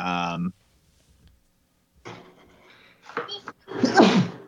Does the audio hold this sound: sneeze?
yes